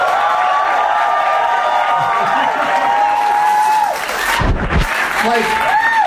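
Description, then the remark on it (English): A large live audience claps and cheers loudly without pause for several seconds, with whoops and shouted voices rising above the dense wash of applause. The audience is cheering for the Zac Efron film We Are Your Friends in an applause vote between two movies. “I'll name the two movies, and we'll see which one gets the bigger applause.”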